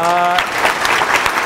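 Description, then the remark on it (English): An audience claps together in a steady, dense round of applause, loud, preceded by a brief tonal note at the very start. “If you want to come up and give a round of applause for everybody.”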